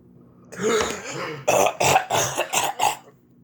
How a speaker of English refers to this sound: As you're coughing and everything